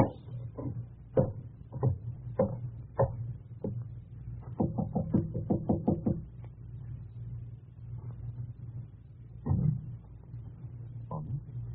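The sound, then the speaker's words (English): A door opens amid a string of clicks and knocks, including a quick rattling burst midway, over a steady low rumble; no one speaks. “Door's open.”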